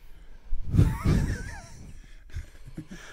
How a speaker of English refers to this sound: All right, I can't take listening to him breathing in these headphones anymore.